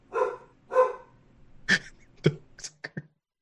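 Dogs bark, two full, drawn-out barks followed by a quick run of shorter, sharper barks and yips before falling quiet. No one speaks.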